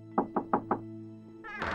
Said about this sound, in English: When he arrived at the gray, glum-looking house, he knocked softly at the door.